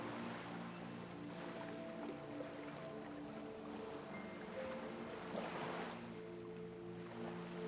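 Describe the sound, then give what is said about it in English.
Ocean waves wash and break on the shore in a continuous rushing surge, swelling a couple of times, with a steady low tonal hum running underneath and no voices. “And as you gently start walking towards the shoreline, you can hear the waves gently getting louder.”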